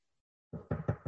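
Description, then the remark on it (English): Four firm knocks on a bathroom wall in a bathroom used as a makeshift home studio, in a quick, even rhythm, each a dull low thud, following a brief moment of silence. “I'm knocking on my bathroom.”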